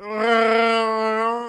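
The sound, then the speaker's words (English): A human voice imitates Chewbacca's roar: one loud, sustained, wailing howl at a steady, fairly high pitch, held for about a second and a half with no talking. “whoever can do the best Chewbacca impression will get money”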